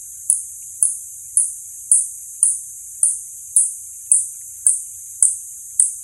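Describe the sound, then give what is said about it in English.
A steady series of about eleven short, high-pitched spotted bat echolocation pulses, used to find insects, recorded in Yosemite National Park, California; each a sharp chirp with a quick fade, repeating roughly twice a second against near silence. “Did you hear that high-pitched pulse? That's their echolocation device to get insects.”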